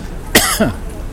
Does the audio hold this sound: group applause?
no